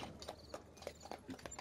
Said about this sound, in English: I hear the footsteps.